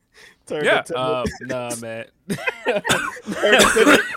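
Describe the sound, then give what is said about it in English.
A harsh coughing fit after inhaling a speck of dust: strained, throaty vocal sounds give way to a run of rough, breathy cough bursts that grow louder toward the end. “Cough has not gone away.”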